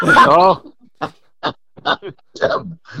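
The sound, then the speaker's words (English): A bird dog at a home in a country subdivision makes noise: a drawn-out, wavering whine, then five short, gruff barks or grunts spaced about half a second apart, moderately loud. “There goes my bird dog.”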